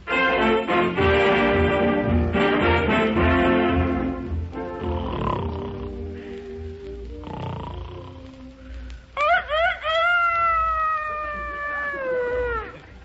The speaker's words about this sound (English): 6 o'clock? Doggone it, I had that rooster set for 9. What's the matter with him? Well, he's a Rhode Island Red. Guess he's still on Eastern time.